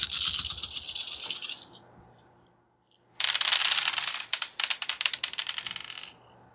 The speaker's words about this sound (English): So I'm rolling 11 dice. Cool.